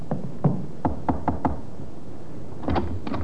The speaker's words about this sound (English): The sergeant climbed the stairs. All the usual questions came to mind. Was this another wild goose chase? How will this Evans behave? Need I expect trouble? The sergeant knocked on the door of the second floor front.